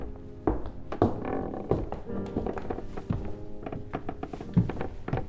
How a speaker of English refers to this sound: he made his way up the creaky staircase.